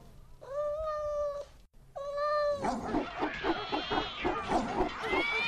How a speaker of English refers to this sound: And coming into the ring just now, Mr. Tubby Face, a long-haired Persian cat.